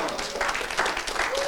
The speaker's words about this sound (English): I'll take an applaud for that, but give Jesus an applaud.